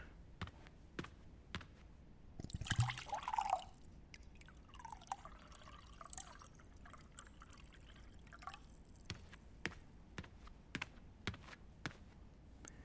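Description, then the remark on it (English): Tea pours briefly into a cup, a second-long splashy stream with a rising pitch, followed by scattered soft clicks and light taps of cups. “I'll pour you some tea.”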